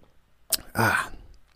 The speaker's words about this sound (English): I was in, excuse me, I got to take a sip of water.